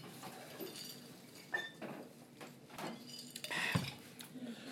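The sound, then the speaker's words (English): Glasses of Appleton Estate rum and Coke clink together in a toast, a couple of light, ringing taps standing out against soft background rustling and movement. “Let's take it off. Cheers. Cheers.”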